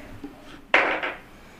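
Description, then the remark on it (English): A player's own dice are tossed onto a hard tabletop for a religion check, rolling a 30: one sharp clack followed by a quick flurry of rattling bounces that fade within half a second, with no voices over it. “That was my first fucking good roll for my actual dice tonight.”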